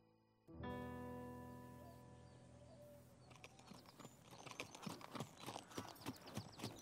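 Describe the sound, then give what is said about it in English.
Horses' hooves clip-clop in an uneven walking rhythm as the horses roam a farm, growing louder and busier after a few seconds, following a sustained ringing tone that fades out at the start. “Looks like these horses are exploring the farm for the 1,000th time.”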